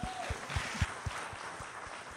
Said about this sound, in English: You're a woman. That alone makes you pretty remarkable. Clap yourselves out.